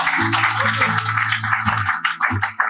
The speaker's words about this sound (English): Give Jesus a big hand clap today. He's worthy.